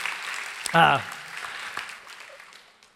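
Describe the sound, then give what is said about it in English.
Audience applause on Father's Day for the fathers, grandfathers and stepfathers present: a steady, dense wash of clapping that runs for about three seconds, a brief voiced whoop rising out of it near the start, then slowly thinning out. “And so can we just give a round of applause to all the amazing fathers, grandfathers, stepfathers, who are here today.”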